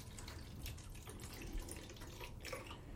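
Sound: water running from tap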